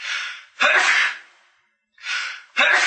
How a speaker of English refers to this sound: Bless you. Sorry. Again.